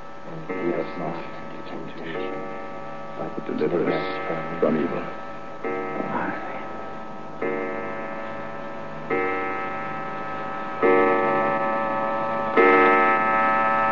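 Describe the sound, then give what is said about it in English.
A clock strikes twelve with a series of ringing, sustained chimes, each stroke about two seconds apart and lingering into the next, over a faint mechanical ticking. “Sir Dominic and his reverence were together in the room, you see, and kept up their prayers till the clock struck 12, and an end of February for that year.”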